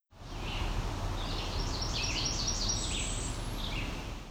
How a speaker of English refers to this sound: This was a Blackburnian Warbler with Red-Eyed Vireo as well.